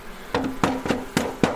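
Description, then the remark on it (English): A heavy beehive lid is set into place with five sharp wooden knocks at a steady rhythm, over a faint low hum. “You hold that while I put the lid on. It's heavy, isn't it?”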